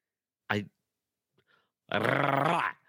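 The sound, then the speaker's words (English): A voice imitates a car engine: a short throaty burst, a brief pause, then a loud, rough, growling rev held for nearly a second before cutting off. “do that car sound again.”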